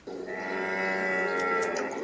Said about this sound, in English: A camel.